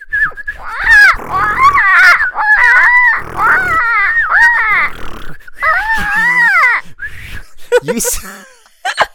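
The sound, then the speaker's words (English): Two people loudly imitate bird calls, pretending to be birds in a box, letting out overlapping squawks, screeches and warbling cries for several seconds, with a few grunting, wheezy breaths mixed in before it trails off. “Okay, if you're a bird, I'm a bird. So here we go. So... we're gonna both be birds in a box, and one of those freaky insane people is coming.”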